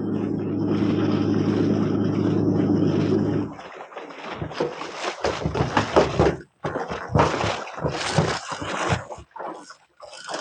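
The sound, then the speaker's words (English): A seaplane's propeller engine drones loudly and steadily for a few seconds as it taxis alongside a steamer, then cuts off, followed by people shouting back and forth with short pauses. “Who aboard two planes to hail you anyway?”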